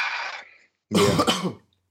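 Two loud coughs from a person who is currently ill, separated by a brief pause, the first breathy and fading, the second a harsher, fuller hack with a throat-clearing rasp. No talking.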